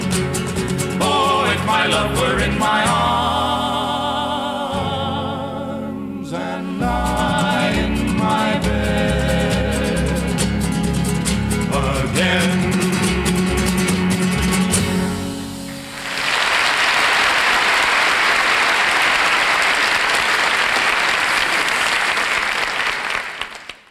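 A folk trio sings a lively song with harmonized voices and accompaniment for about sixteen seconds, then the music ends and loud, sustained applause from a live audience fills the rest.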